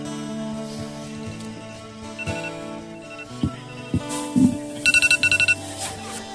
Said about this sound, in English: Well, it's time to... Oh, there's my timer.